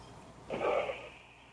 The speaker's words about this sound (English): It sounded like you were snoring. No, it's just breathing hard. It's snoring.